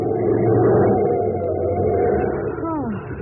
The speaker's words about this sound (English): for a moment there, I bet you were going to hit that other car.